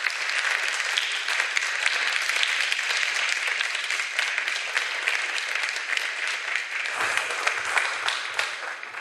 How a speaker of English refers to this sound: Folks, please give him a round of applause.